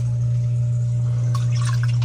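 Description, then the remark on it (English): Conditioned water pours and splashes into a fish tank, starting partway through and continuing to the end, over a steady low electrical hum. No one speaks. “I'm just going to pour that in there?”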